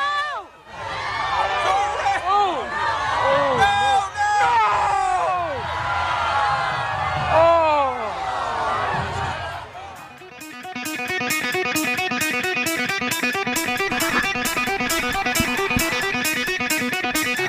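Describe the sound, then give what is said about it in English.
A crowd at the 2010 Richmond Christmas Parade yells and shouts over one another in a loud, excited roar for about ten seconds during the Rudolph balloon accident, then the sound cuts to steady, rhythmic music with a regular pounding beat. “That was the audio from the Rudolph Balloon Christmas Parade tragedy the year Richmond killed Rudolph, that fateful day in 2010.”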